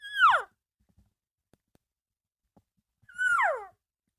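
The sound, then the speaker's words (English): Two soft, mewing cow calls made by a person demonstrating cows calling amongst themselves, each a brief nasal whine sliding downward in pitch, separated by a few seconds of near silence with no voices. “So here's going to be the sample of cow calls amongst themselves, the soft cow calls that you want to try to make.”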